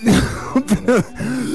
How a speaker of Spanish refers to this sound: Déjese de toser. No será COVID.